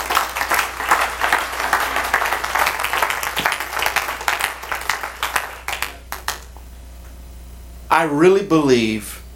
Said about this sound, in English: Let's give God a hand clap of praise to Him.